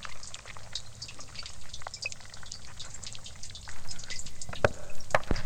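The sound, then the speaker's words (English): Fireworks on a carnival night, recorded from the seaside, crackle and fizz in a dense, continuous hiss of tiny pops, then several sharp, louder bangs burst out toward the end. No one speaks. “Fireworks recorded from the seaside.”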